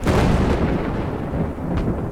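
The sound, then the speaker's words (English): Deep, heavy thunder rolls continuously on a dark, stormy night, loud, with a couple of sharper cracks breaking through the low rumble. No voices, just the storm's booming roar throughout. “It was a dark and stormy night.”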